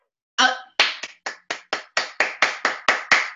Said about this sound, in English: That's me clapping.